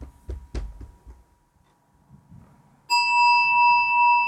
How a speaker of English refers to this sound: So each, we can use the sound of the bell as pointer to this spacious container of awareness in each one of us.